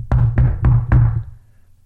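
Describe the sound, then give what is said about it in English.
Four firm knuckle knocks by a servant on an old wooden door, evenly spaced, each with a deep hollow thud that rings briefly before fading into quiet. “A brooded old wooden door bears the knuckle of a servant as he begins to knock to summon the witch in her domain.”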